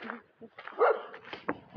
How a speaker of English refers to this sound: That's a doggy of some kind. Mm-hmm. Could be a mastiff. Big dog.